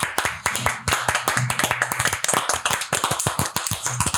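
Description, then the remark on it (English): Steady, fairly loud hand clapping, a quick run of sharp claps at an even rhythm lasting a few seconds, with faint low voices murmuring underneath, as a guest being welcomed is invited to clap for themselves. “You can clap for yourself if you want.”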